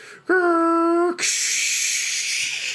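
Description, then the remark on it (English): A voice imitates a dial-up modem: a loud, steady humming tone held for about a second, then a long, harsh, static-like hiss that continues to the end. “Good modem noise. You'll be our modem voice actor from now on.”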